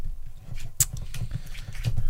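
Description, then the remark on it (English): A bit of paper is fumbled, rustling and crinkling in irregular, scratchy bursts, with one sharper crackle early on, over a low steady rumble. No one speaks. “As I fumble my bit of paper.”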